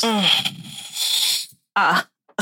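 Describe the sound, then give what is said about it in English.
A drawn-out yawn: a voiced groan slides into a long breathy exhale lasting over a second, followed by a short voiced sigh. “Why are you yawning?”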